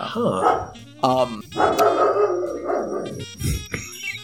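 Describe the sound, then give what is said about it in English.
A dog barks several times in quick, uneven bursts, fairly loud, with people talking over and between the barks. “My dog barks all the time.”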